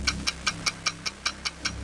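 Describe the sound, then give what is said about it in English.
A game show countdown clock ticks steadily, timing 25 seconds, about five crisp, bright ticks per second in an even rhythm over a low hum, with no voices. “You got 25 seconds on the clock that will begin after I finish reading the first question.”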